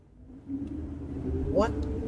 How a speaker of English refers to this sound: This car just drove past us and it's got snow on the back of it. It's not snowing. and that's a lot of snow, too.